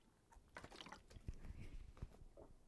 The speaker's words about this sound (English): Sip of water.